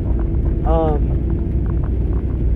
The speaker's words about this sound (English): So, as you can tell, I'm recording in the truck again. And it's raining. The weather here in PA is awfully shitty lately.